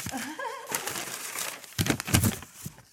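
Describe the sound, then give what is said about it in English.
Crackly rustling of 100% recycled paper as a package is unwrapped, coming in uneven bursts that grow louder toward the middle, after a brief warbling tone at the very start. “It's more fun when I open it, you know.”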